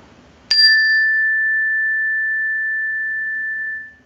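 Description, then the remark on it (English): A Woodstock meditation chime is struck once, giving a sharp bright attack that settles into a long, pure ringing tone, fading slowly over several seconds. “Oh, I also got this meditation chime.”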